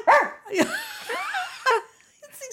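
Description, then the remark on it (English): A person imitates a dog with a few short, voiced barks and yips, including a longer wavering whine in the middle. Fairly loud, with brief pauses and no talking. “Was that quite a good dog sound?”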